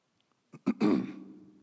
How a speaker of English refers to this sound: Clear my throat